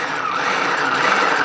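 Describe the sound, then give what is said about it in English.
A food processor motor whirs at a steady, high-pitched, fairly loud level for the whole moment, with no voices over it and no break in the sound. “It's called a food processor.”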